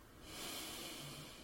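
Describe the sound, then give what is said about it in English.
A long, steady breath drawn in through the nose as a deep cleansing breath taken on a count of three, a soft airy hiss that swells quickly and holds for over a second, fairly quiet with no talking. “Just breathing in”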